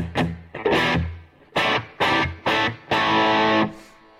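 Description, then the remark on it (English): Distorted electric guitar strikes a series of loud chord stabs, a few quick ones and then longer held ones, each smeared by heavy delay and reverb. No one speaks. “A little too much delay or reverb.”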